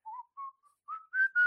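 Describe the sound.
A short whistled melody of several clear, sustained notes rising in pitch toward the end, with brief pauses between phrases, heard alone at moderate volume.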